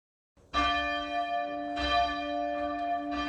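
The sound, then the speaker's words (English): A church bell rings out loudly, struck about four times in an uneven rhythm, each stroke's rich, humming tone ringing on and blending into the next, with no voices. “Ringing the Bell by Laura Hitchcock”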